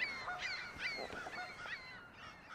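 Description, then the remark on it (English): A single goose honks by itself repeatedly in a loose, uneven series of nasal calls, moderately loud, over a soft outdoor background with no talking. “And then there's a goose over here, just honking by himself.”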